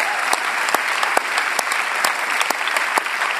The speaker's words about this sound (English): See, that's one of the beautiful things. Yeah, let's just break out and applaud.